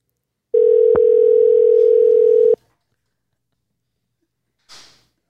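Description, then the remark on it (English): A telephone ringback tone sounds once over the line, a loud steady two-second buzz, followed by silence and then a brief soft rustle near the end. “I can hear it ringing.”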